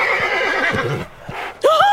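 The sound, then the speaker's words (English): A miniature horse neighs in a long, shrill, wavering whinny, then pauses briefly before a second sharp, rising whinny cuts in loud at the end. “he seems to really get along with the dogs. But not the mini horses.”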